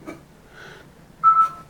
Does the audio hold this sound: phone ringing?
yes